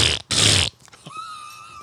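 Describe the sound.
A person blows a loud, wet raspberry imitating a fart: a short sputtering burst, then a longer buzzing one, followed by a faint, thin whine.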